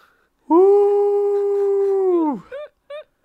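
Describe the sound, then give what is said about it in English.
A dog lets out one long, steady howl lasting about two seconds, then trails off into a couple of short, high whimpering yelps, loud with no talking. “And then my dog jumps on my leg.”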